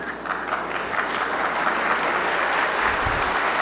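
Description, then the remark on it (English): Sustained audience applause, a dense, steady wash of many hands clapping at an even loudness throughout, with no voices standing out above it. “Is that partisan applause?”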